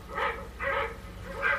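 A dog in a film barks three times in an uneven rhythm, two close together and a third after a pause, sounding somewhat muffled over a low, steady background hum.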